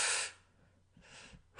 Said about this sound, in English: he took us into this different breathing